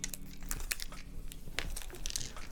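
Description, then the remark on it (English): Plastic wrapping crinkles and crackles in a quick series of irregular bursts as it's pulled away from the header of a USB cable, fairly quiet, with no voices. “effort on making sure that it's plastic wrapped so that you don't scratch this part of the header part of the USB cable.”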